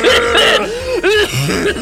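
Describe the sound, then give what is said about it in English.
Several people deliberately cough and clear their throats while shaking hands, a quick overlapping burst of rough, hacking coughs with no speech. “Yeah, let's all cough.”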